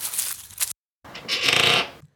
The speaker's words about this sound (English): he heard the fence creak.